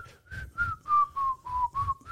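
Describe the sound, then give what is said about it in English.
Someone whistles a short, bouncy melody imitating a theme tune, about eight clear notes in a steady rhythm with the pitch gently rising and falling, and no talking over it. “Anyway, your whistling game has gone on. Leaps and bounds, my friend.”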